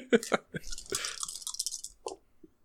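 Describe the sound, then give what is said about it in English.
A handful of about eight or nine dice rattles and clatters in a dense burst of sharp clicks lasting about two seconds, followed by a few scattered taps as they settle. “Many dice rolled.”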